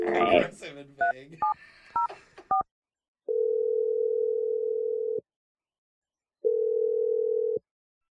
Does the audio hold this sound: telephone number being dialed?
yes